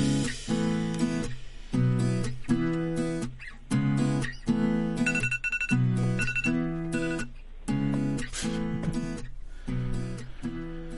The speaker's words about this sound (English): Must apologize. The alarm that I set for 9 a.m. just went off now, which makes it 9 p.m., which is great.